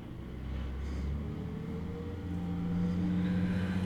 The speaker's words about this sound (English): got the trucks going past.